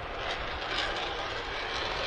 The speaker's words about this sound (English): And then banking, and you can see the afterburner there on that single engine. Oh, my gosh.